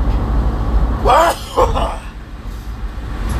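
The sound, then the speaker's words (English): A two-part sneeze bursts out over low background rumble: a rising voiced intake followed quickly by a sharper, breathy release, then quiet hum resumes. “Whether I got to sneeze again.”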